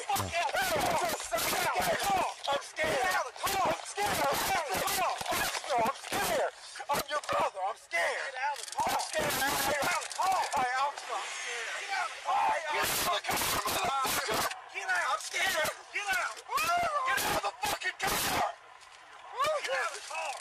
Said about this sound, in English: They're tasing him again, yeah. They're tasing him in the car the second time. I can hear the prongs. I can hear him tasing him. That's two times they're tasing.